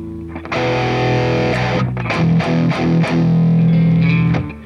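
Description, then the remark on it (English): A loud distorted electric guitar, played through a guitarist's signature distortion preset in an amp-modelling program, plays sustained chords, with several sharp strums landing in a loose rhythm and ringing out heavily between them; no one speaks. “Can I not save any of his distortion? Oh, there's one. … signature right there.”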